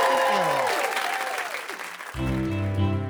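A crowd breaks into loud, sustained applause for Confucius, dense clapping running throughout, with a burst of bright cheering at the start and a low musical sting entering near the end.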